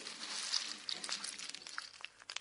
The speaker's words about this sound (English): Could you please tell me what's happening when you hear the Snap, Crackle and Pop with Rice Krispies?